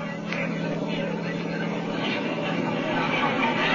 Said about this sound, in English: The fighter planes were coming in, biplanes, each with 2 machine guns and a few bombs.